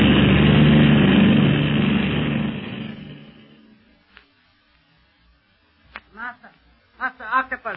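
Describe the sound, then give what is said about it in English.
A loud, steady drone from the engine of the secret police plane, still in the air and climbing higher instead of landing, fills the opening seconds, then fades away to near silence before a man's voice begins speaking. “Where is the plane of the secret police now, Zabul?”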